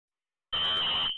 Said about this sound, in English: So, automatically, you hear the fire alarm going off. You hear the police going in.